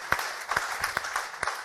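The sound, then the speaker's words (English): An audience gives itself a round of applause, a steady wash of many hands clapping with a few sharper individual claps popping out above it. The applause is moderately loud and has no voices over it. “And you should all give yourself a round of applause for standing up against that anti-Semite.”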